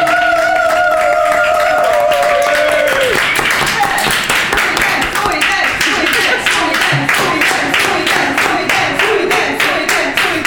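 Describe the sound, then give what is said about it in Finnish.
An audience breaks into sustained applause for Suomen improvisaatioteatteri (the Finnish Improvisation Theatre) turning one year old, dense clapping for about ten seconds, with a held tone and voices fading out at the start. “Hei, saanko vielä sanoa ennenkin, koska nyt Suomen improvisaatioteatteri täyttää 1 vuoden, niin voitaisiin ottaa pikku aplodit Suomen improvisaatioteatteri.”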